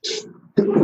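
A single sneeze in two quick parts, a hissy intake followed by a brief pause and then a loud, breathy burst.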